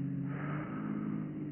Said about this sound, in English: I can't get over. There's a car passing me.